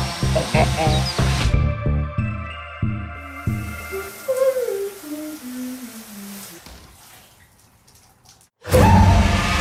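A drone flying inside a house, its motors buzzing with a steady, high whine, then the pitch slides down in steps as it slows before a loud burst of noise returns at the end.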